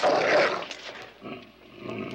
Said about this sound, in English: I think it's a dog.